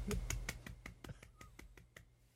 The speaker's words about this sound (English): No, wait a minute. Golf clap.